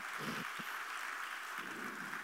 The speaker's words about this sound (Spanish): Recuerde, dele un aplauso al Señor.